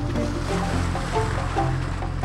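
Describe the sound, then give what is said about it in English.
Steady churning water sloshes continuously as a cruise boat carrying seated passengers travels down a river, with a constant low rumble and scattered splashy textures throughout. “We'll be traveling down the rivers of adventure before reaching Pele's Pleasure.”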